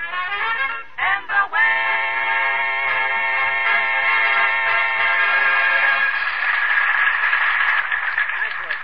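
A recorded vocal quartet sings a gospel song in close harmony, with a few short phrases followed by a long, swelling held chord at the end. The sound is thin and band-limited, like an old broadcast.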